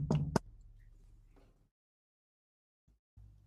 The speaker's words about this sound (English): I think we pop over to the doctor's room with a knock at the door.